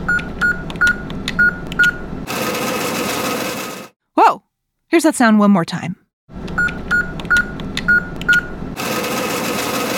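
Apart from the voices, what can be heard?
ATM cash machine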